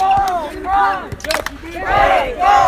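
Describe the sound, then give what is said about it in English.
A basketball crowd at a game between Baco and Brant cheers loudly in sustained, swelling waves of voices, with a brief burst of sharp squeaks and clatter in the middle before the roar rises again. “Crowd really getting into it now”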